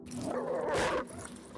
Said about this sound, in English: A large mass loomed up presently out of the darkness, and a huge dog rushed out, barking furiously.